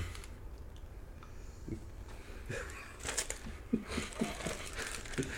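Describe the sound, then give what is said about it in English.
Soft crinkling of paper being crumpled, with irregular rustles and small crackles that grow busier toward the end, heard on its own without any voices. “Well, you know, they know it's, they can hear the paper crumbling.”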